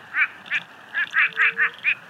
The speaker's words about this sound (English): I love the sound of moaning frogs and quacking ducks. No, wait, I mean quacking frogs.